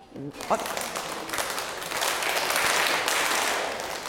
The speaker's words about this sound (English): Why don't you clap for her? I think it's been a long time we clapped that special clap. So I think you forgot that one also. Do you remember the special clap?